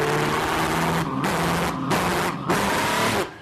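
A car engine revs hard and loud, its roar dipping briefly a few times like quick gear shifts before surging again, with no voices present.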